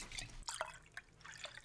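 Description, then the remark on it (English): Tea pours into a cup in a brief, quiet trickle, broken by a few distinct splashy drips, with no talking. “Spilled it all over me. Yeah, had to re-pour.”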